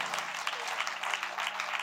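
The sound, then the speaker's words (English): An audience at CTK claps together to thank the Lord for its leadership, a steady, dense wash of applause, many hands beating at once with no single rhythm, holding an even, fairly loud level throughout. “Can you clap your hands and thank the Lord for the excellent leadership that you have at CTK?”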